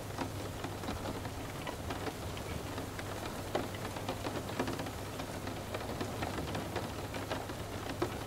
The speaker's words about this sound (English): every raindrop washes away each thought, which cleanses your mind.